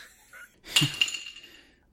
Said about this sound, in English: Sounds like you just dropped your glass. You were so shocked. No, actually, the old puppy back here is playing with a, we'll say, combustible bone that if you drop it, it sounds like something exploded, and so you just dropped a small piece of it.